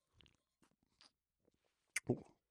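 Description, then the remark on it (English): Someone sips a rich 9% double IPA beer: a few soft, scattered slurping and swallowing sounds, then a brief louder gulp and a short voiced exhale. “I'm going to sip this beer real yeah, quick.”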